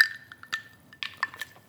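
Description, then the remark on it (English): Ice cubes rattle and clink against a glass of gin in several quick, bright taps, fairly quiet, with a faint ringing tone underneath and no talking. “It's like this, the sound of ice cubes rattling in a glass of gin.”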